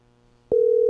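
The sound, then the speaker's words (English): After a moment of near silence, a telephone ringback tone starts abruptly on an outgoing call heard over a live broadcast: a steady, loud electronic tone that holds unbroken to the end. “So the phone is going to ring on the air. Oh, yeah. There it is. It's ringing on the air.”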